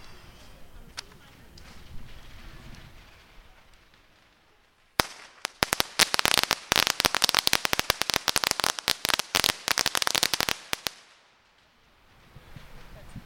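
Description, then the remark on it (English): A whole packet of firecrackers is lit in a small sandy park on a street corner, dozens of sharp, loud cracks in a rapid, irregular burst lasting several seconds, framed by quieter background murmur before and after. “We had a small box of firecrackers that someone in the festival had thrown at us earlier, and we're lighting the whole packet.”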